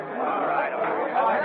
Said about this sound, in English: Crowds of imprudent people bear down on the police station, mill round the entrance on First Street. Mounted police strive vainly to push them back to a safe distance.